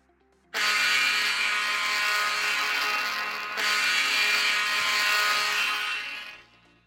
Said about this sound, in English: Okay. Goal horn. Horn two.